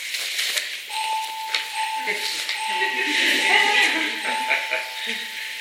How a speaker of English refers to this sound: There's a quote that I want to end with, and of course they're going to start beeping again because that's what they did yesterday. It's like, all right, come on, you guys.